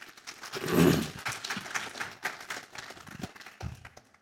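An audience claps for a few seconds for a participant who did a great job, a dense patter of hands that swells early and then tapers off unevenly, with a few louder individual claps near the end.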